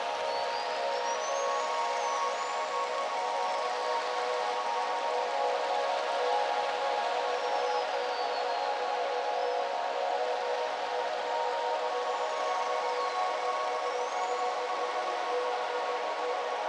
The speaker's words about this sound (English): I was listening to the sounds of the Hebridean seas myself and trying to discern not only what I was hearing, but also what I was feeling and what exchange was taking place with my deep listening through the hydrophone.